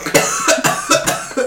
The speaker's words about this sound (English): coming off of a sickness where if he laughs too much, he has to cough.